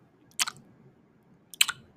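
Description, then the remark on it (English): A voice imitates the wet lip-licking mouth sounds of an ASMR video: two short, crisp smacking bursts about a second apart, bright and clicky, over a quiet background with no talking. “And so, like, I turned it on, I put it down, I laid my head down, and all of a sudden I just hear this girl start licking her lips, like...”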